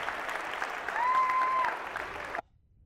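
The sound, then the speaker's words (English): An audience claps steadily for a couple of seconds, a dense wash of many hands, before the applause cuts off abruptly into near silence. “Let's give her a real round of applause.”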